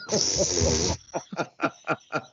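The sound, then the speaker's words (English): A husky puppy play-fighting: a harsh, hissing snarl for about a second, followed by five quick, rhythmic huffing yips. “So occasionally there may be some fighting happening in your house.”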